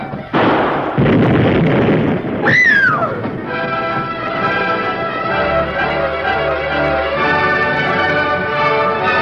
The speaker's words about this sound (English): Yes, evidently those who didn't catch the full force of the blast were scared away.